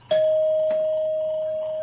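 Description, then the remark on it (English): A doorbell rings with a clear electronic chime, a steady bright tone that starts sharply and sustains evenly, with no voices present. “Answer the door, moron.”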